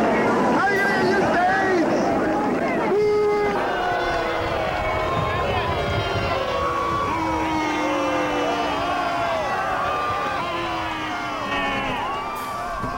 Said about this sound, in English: At the same time as all these jeers, screams at Mayor David Dinkins